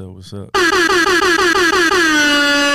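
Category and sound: sound effect, air horn sound effect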